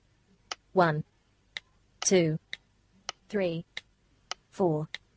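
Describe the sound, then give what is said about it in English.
Sharp, evenly spaced clicks from tapping the numbers 1234 on a phone's on-screen keyboard to enter a phone number in a text field, each tap followed by a short spoken word, giving a steady tap-then-voice rhythm. “And in this case, I'm just going to cheat and just type 1234 on the on-screen keyboard.”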